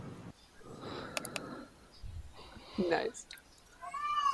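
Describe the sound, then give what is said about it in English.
A cat named Beans meows twice, a short rising call followed by a longer drawn-out meow, against faint background murmuring. “Oh, look, Kitty's calling for you. Kitty. Yep. Yeah, that's Beans. He's singing.”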